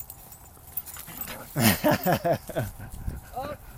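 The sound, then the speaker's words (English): A small dog lets out a quick run of whiny yips and short barks up close, followed by a softer whimper against a quiet background. “He seems to have some Jack Russell energy.”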